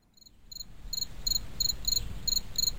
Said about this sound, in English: Crickets. Just insert some crickets there.